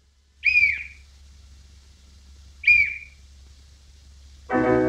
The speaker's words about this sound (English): And later there's a chirping sound of a whistle that he swallowed that can be heard.